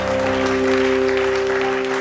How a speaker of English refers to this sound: Oh, somebody give the Lord a clap.